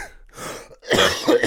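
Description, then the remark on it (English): A man coughs and clears his throat, a short raspy rumble followed by a louder, harsh burst of coughing with no talking. “I'm fighting off a cough.”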